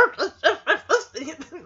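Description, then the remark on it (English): A man's voice imitates a dog as dubbed ADR, letting out a quick run of rhythmic, throaty bark-like bursts that trail into lower growly sounds, fairly loud. “That is a man doing a dog's voice ADR.”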